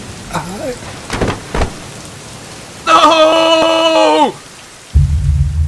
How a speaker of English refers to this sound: This is impossible in this rain.